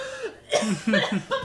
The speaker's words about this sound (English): I'm coughing.